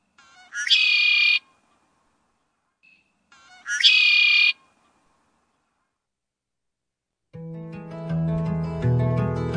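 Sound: red-winged blackbird call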